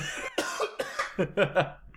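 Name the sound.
coughing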